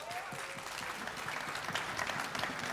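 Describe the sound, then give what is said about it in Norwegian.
Dense, steady applause from a crowd at a tent meeting in Listalandet, given for the performers just heard, fills the whole stretch, a continuous wash of many hands clapping, with faint voices mixed underneath. “skal vi gi dem en skikkelig klapp.”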